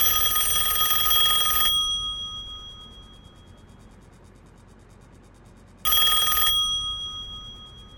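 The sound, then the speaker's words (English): An old-fashioned telephone bell rings in two bursts, the first about a second and a half long, then a pause before a shorter second ring. It's loud and goes unanswered, with no one speaking. “If you don't stop ringing me, I'm going to call the police.”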